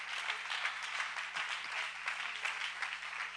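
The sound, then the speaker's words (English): A crowd claps steadily for Jesus during a sermon, a dense wash of many hands applauding together at a fairly loud, sustained level, with a faint low hum beneath and no one speaking. “If you're hurting, you ought to clap your hands with all of your heart, with all of your mind, with all of your soul today.”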